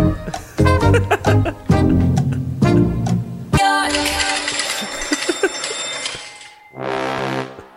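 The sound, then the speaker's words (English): A song played as a quiz theme, then a bright, rapid ringing bell rattles on steadily for about three seconds over the music before a sustained sung note takes over. “And then there's, it sounds like, what's that little ring-a-ding-ding sound? Is that like a train? It's like a slot machine, like you're winning.”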